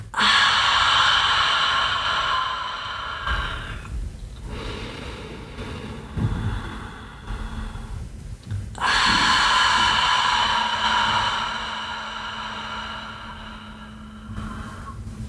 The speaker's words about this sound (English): Just breathing in through the nose, feeling the belly expand, the chest expand, letting it out through the mouth.